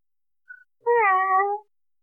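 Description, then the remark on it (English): A single drawn-out, fairly loud cat meow with a falling, harmonic tone lasting most of a second, preceded by a brief faint chirp; no one talks. “The victory meow.”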